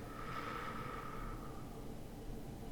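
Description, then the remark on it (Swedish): A long, steady breath out through the mouth, emptying the lungs, a soft breathy whoosh that gradually fades away over about two seconds, quiet, with no talking. “Töm lungorna på luft.”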